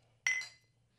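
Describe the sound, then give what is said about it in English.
A single bright clink as two Bud Light Lime beer containers knock together in a toast, its ringing tone fading within a fraction of a second over a faint low hum, with no one speaking. “Cheers to Bud Light Lime.”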